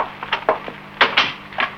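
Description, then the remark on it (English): A parlor door closes: a handful of short wooden knocks and rattles, ending in a couple of louder thuds as it latches. No voices are heard. “In here, in the parlor. And we can shut the door.”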